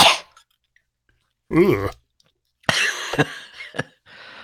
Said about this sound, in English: I'm just clearing my throat. Oh. As this is such a special show, I've got to be absolutely tip top, you know.